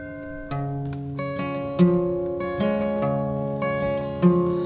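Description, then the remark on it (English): Church bells ring out in a steady sequence of struck tones, each strike blooming into a long, overlapping hum that layers into a full, resonant peal with no voices. “On Sunday when the church bells start ringing, they're ringing for you and for me.”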